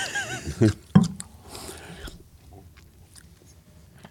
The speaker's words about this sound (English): Ice chewing's great for the pod.